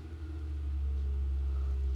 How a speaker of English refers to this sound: What the hell is that? Somebody's door? Is that a spaceship coming through? Dude, that car has a fucking... It's a Hemi. It sounds like a spaceship coming down.